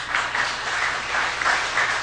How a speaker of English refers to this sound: Yeah, you guys should applaud each other.